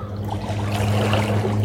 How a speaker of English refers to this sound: Beautiful waves created by the wake.